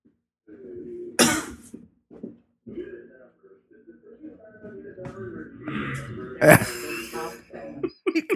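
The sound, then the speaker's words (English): Two sharp, close coughs burst out several seconds apart, while a fainter, distant whinny-like call rises and falls between and around them against a low murmuring background. “The cougher is much closer to the phone, and the whinnier is much further away.”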